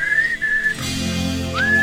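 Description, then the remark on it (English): Someone whistles a short melodic tune, clear, with a sustained note, a pause, then a rising glide into another held note over a low background hum. “there's a dog in the neighborhood that'll only come if you whistle that bridge over the river Kwai whistle”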